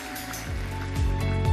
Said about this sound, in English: Can we give Sean and Deb one more round of applause to show them our gratitude, our thanks?